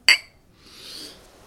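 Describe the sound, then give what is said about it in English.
A single bright, ringing clink of whiskey glasses touching in a toast to Sir Ernest Shackleton, sharp, followed by a soft breathy rustle as the ringing fades. “Well, cheers.”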